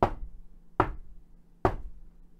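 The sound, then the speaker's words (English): Three heavy, booming knocks on a door, banged by a resident assistant at about 8 or 9 p.m. after dark, evenly spaced about a second apart, loud, each ringing briefly before the next; no one speaks. “About 8, 9 p.m. when the RA banged on my door.”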